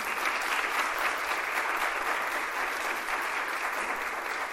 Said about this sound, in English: That deserves separate applause before we, you know, give big applause